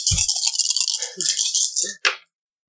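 A handful of dice, rolled next to a microphone for fall damage in a dice game, rattles and clatters in a busy, bright jumble for about two seconds, ending in one sharp final clack before silence. No one speaks.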